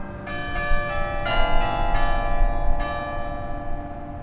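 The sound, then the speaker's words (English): Church bells ring out in a steady peal, several strikes overlapping with long shimmering tones, over a low outdoor rumble with no voices. “A family of three generations sat on the benches nearby as the youngest cartwheeled down the hill and the bells rang forth.”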